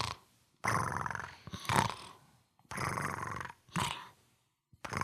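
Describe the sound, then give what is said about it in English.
Someone imitates the cartoon character Korin snoring in his sleep with their voice: a long, raspy, rumbling snore, then two shorter breathy snorts, in loud rough bursts separated by brief pauses. “And then you hear Korin sleeping.”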